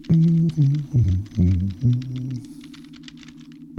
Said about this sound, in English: what are you typing? The password for us to get in this hangar.